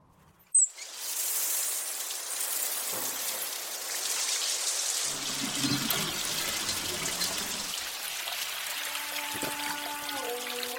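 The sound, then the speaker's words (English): After a brief click, water bursts from a shower and sprays steadily in a loud, hissing rush that continues to the end, with faint tonal sounds creeping in near the close. From a Hindustan Unilever water conservation ad by Ogilvy Bombay, set in a village in Rajasthan with a shower booth. “Ek din hamare gaon mein kisi ne nahane ka saavar rakh diya.”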